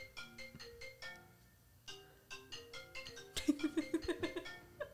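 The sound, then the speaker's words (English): A mobile phone ringtone, from a phone left on volume, plays a bright, bouncy electronic melody of quick repeated notes, clear, with a burst of rapid chirpy tones near the end and no talking. “Sorry, guys, my phone just rang.”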